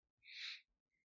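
A single stifled sneeze: one short, breathy, hissing burst of air held back to a muffled puff, followed by a faint brief squeak, with no talking.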